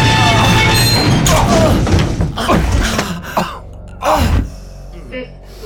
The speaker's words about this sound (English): The elevator shook to a halt as the red emergency light activated, bathing the elevator in crimson.